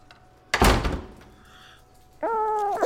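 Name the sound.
door closing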